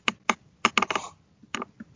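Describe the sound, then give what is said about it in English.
Computer keyboard keys clack in an uneven burst of taps, a quick cluster followed by a few scattered strokes, fairly crisp with no voices. “I hear typing.”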